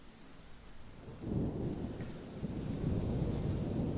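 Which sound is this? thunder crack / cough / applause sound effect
thunder crack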